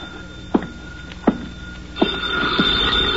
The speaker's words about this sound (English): I sat down to wait for him, and the phone started ringing.